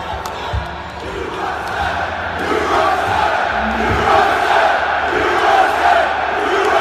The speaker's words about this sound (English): Yes. American troops chanting USA to their commander in chief. That was just a great moment.